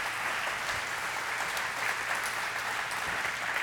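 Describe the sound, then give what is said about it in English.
Steady applause from an audience, a dense, even wash of many hands clapping that holds at a constant level from start to end, with no voices standing out. “Give them another applause if you would.”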